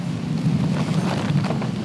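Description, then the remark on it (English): A stormy wash of rain hiss over a deep, continuous rumble of rolling thunder during a thunderstorm with lightning and wind, heard while camping in a tent, fairly loud throughout, with no voices. “Lightning everywhere.”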